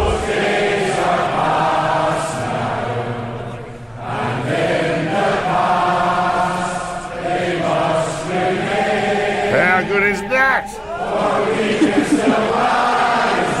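A sellout stadium crowd at a sports match sings a song together, loud sustained melodic voices filling the whole stretch, dipping briefly partway through before bursts of cheering and whistles break in near the end.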